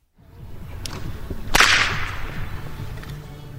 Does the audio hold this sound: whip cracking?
yes